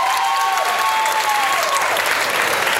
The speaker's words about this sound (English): Everybody clap for Logan one more time.